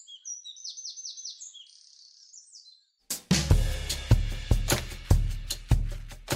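A wren, an English garden bird, sings a rapid, high-pitched trilling song for about three seconds, bright, before it cuts off and loud rhythmic music with a steady beat takes over.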